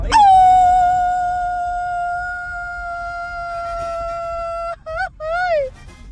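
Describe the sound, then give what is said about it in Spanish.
A woman lets out a long Mexican grito, holding one loud, high, steady cry for nearly five seconds before breaking into a few quick warbling yelps that trail off. “Soy mujer, pero también sé cómo hacer el grito.”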